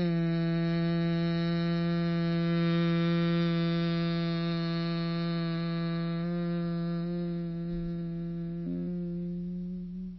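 A single steady hum held on one pitch for about ten seconds after a deep, full inhale, done as a breathing exercise, fairly loud, fading slightly at the end as the breath runs out. No talking.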